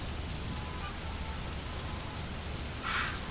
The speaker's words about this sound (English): Oh, I can see the kids playing in the rain, the adults running from the wet, the drains filling up with water, and everything getting washed down and clean for another day.